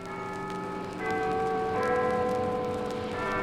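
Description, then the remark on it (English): Church bells ring out in a steady peal, several overlapping tolls with long sustained tones and shifting pitch, loud and continuous with no voices. “Old Spider's senses ring a tingle in a way like those bells. The bells?”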